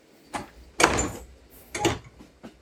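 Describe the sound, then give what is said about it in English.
A push-button sliding door on a British train toilet: a short click, then a loud hissing whoosh as the door slides, followed by a second shorter rush and a faint clunk, with no talking. “toilet door openers shouldn't be of the door handle variety that you and I probably have at home”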